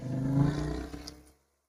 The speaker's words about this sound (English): That's a loud-ass motherfucking motorcycle out there.